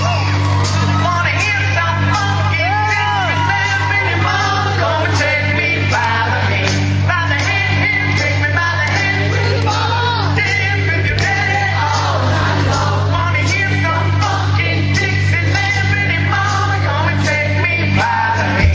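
A man yells the sung intro of an old song through a megaphone, loud and nasal, over a steady low hum and a dense wash of crowd noise that runs the whole way through.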